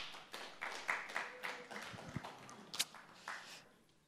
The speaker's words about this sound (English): That was a really good round of applause.